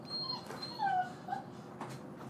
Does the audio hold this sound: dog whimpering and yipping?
yes